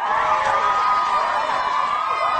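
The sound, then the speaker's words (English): A crowd of teens and young people in Montana cheers and shouts together over TikTok not being banned, a loud, steady roar of many voices that holds for a couple of seconds without letting up. “And since TikTok won't be banned, a cheer went up from all the teens and young people in, I was going to say Minnesota, Montana.”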